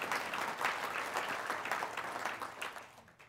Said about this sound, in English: We can give that a big round of applause.